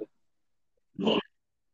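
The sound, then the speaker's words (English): A person gives one short, gruff vocal bark in imitation of a dog, loud, referring to wrestler Roman Reigns' nickname "the big dog", standing alone after a moment of near silence. “the big dog, the man of many nicknames, Roman Reigns. He's woof, woof.”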